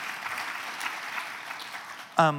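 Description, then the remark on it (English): An audience applauds in a dense, steady crackle of clapping for about two seconds, then a voice begins speaking as the applause fades. “Do you dream, that's worth applause, yeah.”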